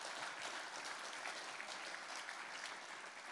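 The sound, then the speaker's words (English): A church audience applauds steadily for a woman of the church, a dense, even wash of many hands clapping without pause, with no voices rising above it. “That woman, we need to give a special applause”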